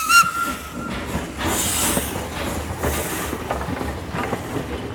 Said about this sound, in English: The train departed and passed the villages the prisoners called home. The train came from Trieste.